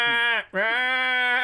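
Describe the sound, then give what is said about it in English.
Two loud sheep bleats follow one another almost without pause, each a long, wavering, nasal cry, the second stretching out a bit longer than the first. “And then, like, ding, ding, ding, ding, and then, they're getting away from you, and they're pretty fast for sheep.”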